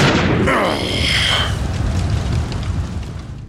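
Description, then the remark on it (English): A loud explosion erupts with a broad roaring blast, then trails into a long rumbling, crackling decay of falling debris. No voices are heard. “The explosion had knocked my attacker and I backwards, separating us,”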